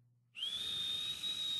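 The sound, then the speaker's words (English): A person lets out a single long, shrill whistle that starts abruptly and holds steady at a piercing pitch, breathy, like the whistle European crowds use instead of booing. No one speaks. “Europeans don't boo, they whistle.”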